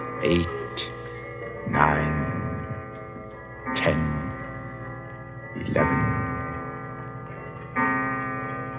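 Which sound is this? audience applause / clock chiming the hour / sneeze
clock chiming the hour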